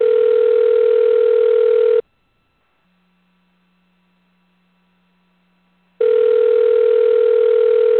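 phone line ringing

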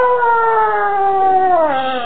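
coyote howling

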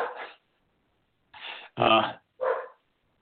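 poodles barking

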